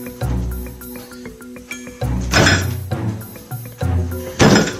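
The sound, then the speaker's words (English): A turkey bangs against a front door: a series of loud thuds at uneven intervals, with lighter clinking knocks in between and no voices. “There's a turkey banging on my front door.”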